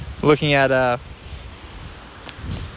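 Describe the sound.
Steady wind rushes and rumbles across the microphone outdoors, a low, breathy noise throughout, with a brief voiced sound near the start and a couple of faint gusts later.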